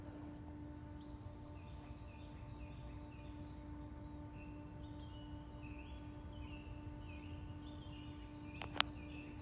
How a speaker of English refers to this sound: Friday, June 9th, and I'm in Northwest Alabama, getting the bird song.